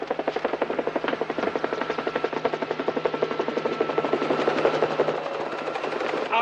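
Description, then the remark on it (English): A helicopter draws closer, its rotor blades thudding in a rapid, steady chop that grows louder and fuller, with engine whine layered underneath and no voices. “The chopper's here, sir.”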